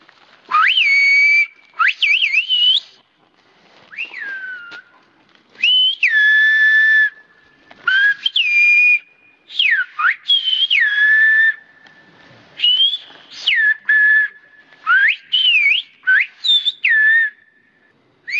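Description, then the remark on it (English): Whistled Spanish speech in a dialogue between two men several hundred yards from each other: loud, piercing whistled phrases with rapid pitch glides and held tones, delivered in bursts separated by short pauses. No one talks normally. “whistle speech directly switches to imitating the melody of the word”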